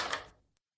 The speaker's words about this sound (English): Shortly after, I heard the owner come up and lock the door.